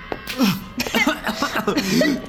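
A voice acts out a fit of coughing: several harsh, close-up coughs in quick succession, rough and breathy, with strained voiced gasps between them.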